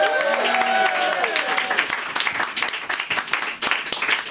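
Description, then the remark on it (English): An audience applauds with steady, dense clapping for several seconds, while a few voices and whooping cheers rise over it at the start before fading into the continuing applause. “I think that needs more applauding.”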